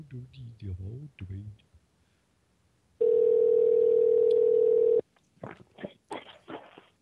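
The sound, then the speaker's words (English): A loud, steady telephone tone sounds for about two seconds while someone is being called back, alone in the gap between stretches of people talking before and after it. “Let's call him back.”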